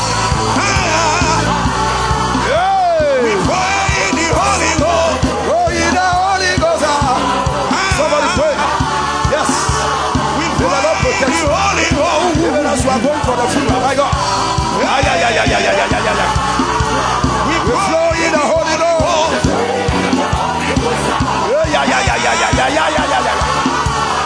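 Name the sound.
audience shouting in worship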